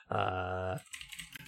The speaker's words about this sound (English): I hate to be typing in this at all.